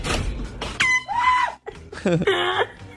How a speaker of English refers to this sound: A husband and wife kept scaring each other with an air horn, and it culminated with her turning the hose on him. Check out this audio.